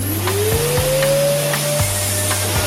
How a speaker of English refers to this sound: Vacuum, please.